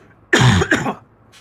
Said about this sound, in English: I got to cough.